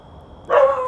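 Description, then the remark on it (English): A single sharp dog bark bursts in suddenly halfway through, loud, following a brief stretch of quiet background hum. “Well, my dogs broke that chain.”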